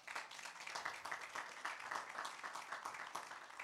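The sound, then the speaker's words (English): A church crowd applauds a hardworking single mother steadily, a dense patter of many hands clapping at an even, sustained level for a few seconds, with no voices rising above it. “Let's give her a round of applause, man.”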